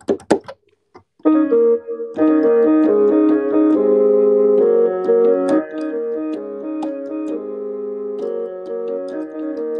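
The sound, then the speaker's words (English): A few quick clicks of buttons being pressed to transpose a musical keyboard by three, then sustained electronic keyboard notes play a steady melody with chords, with no one talking. “Wait, I'm going to try to transpose the keyboard real quick.”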